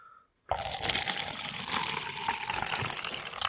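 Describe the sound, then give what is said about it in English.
A drink pours steadily into a glass from a container whose cap has just been unscrewed, after a brief pause: a continuous splashing gurgle with bright fizzy texture that holds for several seconds without any talking. “And the pour.”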